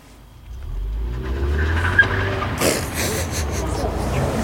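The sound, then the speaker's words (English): A car approaches with a low, swelling engine rumble, then sweeps past in a loud rush of road noise and tire squeal that lingers as it moves on, at a drag race track. “Here comes a car.”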